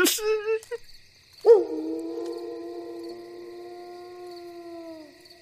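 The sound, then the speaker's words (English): A single long howl from a large, shaggy werewolf about 3 feet away rises sharply, then holds a steady, slowly sagging wail for about three and a half seconds. It is close and loud, after a couple of brief higher yips at the start. “It was a loud howl coming from about 3 feet away.”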